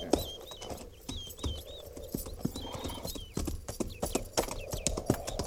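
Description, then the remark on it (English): Horses' hooves clip-clop in a steady, uneven patter of sharp knocks as several horses walk by a creek where they are to be watered. High bird chirps repeat faintly in the background. “Not after we water the horses.”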